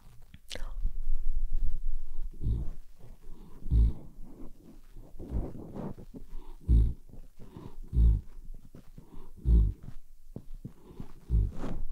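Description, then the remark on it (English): A puppy snores in a steady rhythm, each breath a low, rumbling snort repeating roughly every second, with soft rasping in between. “You need a puppy dog snores, huh?”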